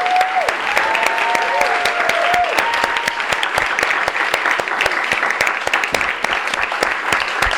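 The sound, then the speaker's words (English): Sustained audience applause for the readers at a Rattling Wall literary journal reading, a dense crackle of many hands clapping steadily for several seconds, with a few faint whistles or cheering tones rising above it early on. “One more round of applause for all of our readers.”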